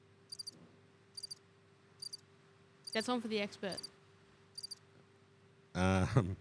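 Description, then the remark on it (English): Crickets chirp in short, evenly spaced bursts, about six high trills roughly a second apart. A man speaks briefly in the middle, and another voice comes in at the end. “Crickets.”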